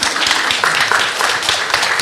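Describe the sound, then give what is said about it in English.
An audience applauds the panellists of a discussion, many hands clapping in a dense, continuous patter that stays loud and even for the whole moment, with no voices standing out above it. “And let's give our panellists a round of applause as well.”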